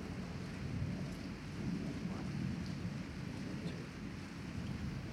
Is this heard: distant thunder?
yes